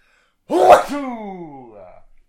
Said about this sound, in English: Oh. Bless you.